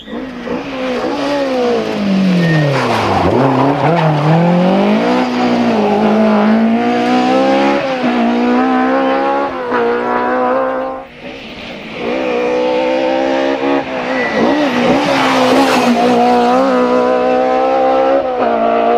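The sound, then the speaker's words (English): A Sydney Meek prepared rally car driven by Bertie Fisher roars past at full throttle during the Donegal rally, its engine note climbing and dropping sharply through repeated gear changes, loud and continuous for the whole stretch with brief lifts between shifts. “Sydney Meek prepared car has run faultlessly, and with Fisher's bogey stage Fannett now finally behind him, his first Donegal victory is looking more possible by the mile.”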